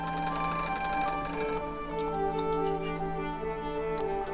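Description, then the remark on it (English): A telephone bell rings loudly, a sustained metallic jangle that gives way to fading, shimmering tones with a few small clicks. No one speaks. It is an incoming call from Paul to Beechwood House. “She thinks what she's going to do is to read books, but then she gets a phone call from Paul.”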